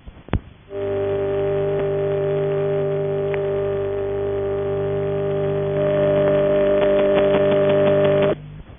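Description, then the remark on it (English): A transistorized number-unobtainable telephone tone: a steady, unbroken buzzy hum lasting about seven seconds after a brief click, growing slightly richer near the end before stopping abruptly. “And following that, the sound of a transistorized NUT, rather faint, I'm afraid.”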